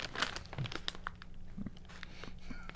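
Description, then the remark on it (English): Brown paper crinkles and crackles as a package wrapped in brown paper and tied up with strings is unwrapped, with scattered sharp rustles and tearing bursts over a steady, moderate background. “So this is wrapped up. A brown paper package. Tied up with strings.”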